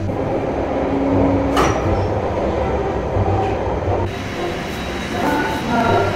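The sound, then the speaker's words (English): An old Bakerloo line tube train rumbles steadily through a tunnel, a dense low roar with rattling carriages and brief metallic screeches, loud throughout with no voices. “Anyway, from a bus to a tube inside a tunnel, which is possibly relevant to what we're going to be doing later on.”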